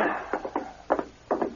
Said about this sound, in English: As they went through the swinging door to the kitchen